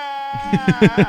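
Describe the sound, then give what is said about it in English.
A male's long, drawn-out cry holds a steady, harmonic-rich tone, then swells in four throbbing pulses toward the end, sounding somewhat like a bleat. No one speaks. “Yeah, that's the best cry. It goes on for so long.”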